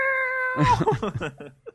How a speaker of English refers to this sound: And other cats pick up the cry, and it goes all the way up to Ulthar, and they get there really fast.